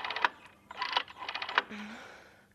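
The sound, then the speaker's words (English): The circular dial of an old-fashioned rotary telephone being turned by a woman's fingers as she calls an ambulance after a heart attack, giving crisp bursts of ratcheting clicks with short pauses between them, then a soft whirring as it settles. No one speaks. “She used every last speck of her energy to turn the old-fashioned circle-shaped dial with her fingers.”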